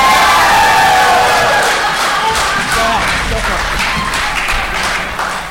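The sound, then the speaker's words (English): A large crowd roars Auburn's 'War Eagle' battle cry, many voices shouting together in a loud, sustained wall of sound with cheering and clapping mixed in throughout. “Did I hear a war eagle?”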